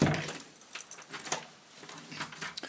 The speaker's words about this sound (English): Just getting out the door, putting the gloves on.